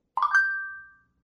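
A single bright two-tone notification chime from an Android phone rings out once, starting with a quick soft onset and then sustaining a clear ringing tone that fades away within about a second.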